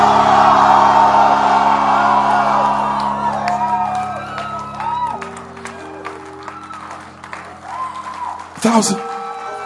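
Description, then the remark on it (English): A large conference audience screams and shouts loudly when asked to scream, a dense roar of cheering voices with whoops and yells that swells at first, then thins into scattered cries, with a sharp burst near the end. “Can I get somebody to scream?”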